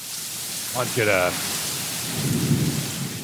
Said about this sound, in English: Listen to that sound of rain. It's going to tie in with the story that I got to tell you guys.